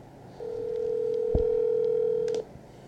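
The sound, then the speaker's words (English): A phone line tone for an incoming call from a barbershop, Classic Cuts: one steady, mid-pitched beep held for about two seconds, with a faint click partway through, over a low background hum. No one speaks. “Hold on, babe, real quick. They're calling me from the barbershop.”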